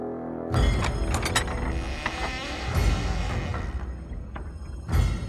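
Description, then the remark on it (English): A heavy secret door from a hidden passageway in King Hoderi's palace grinds and creaks open, with ratcheting clicks and scraping, loud, lasting several seconds with a few stronger thumps along the way. “In a little used hall in King Hodedi's palace, a secret door from a hidden passageway opened, and Prince Hoori crept out.”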